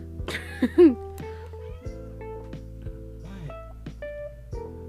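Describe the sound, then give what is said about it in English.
A fat, hungry cat near recording equipment lets out a short meow near the start, then goes quiet, leaving a steady electrical hum and a few faint, scattered background noises. “now we're going to have two cats. One blind, one fat.”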